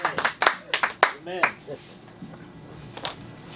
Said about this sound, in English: Come on, let's give Jesus a round of applause.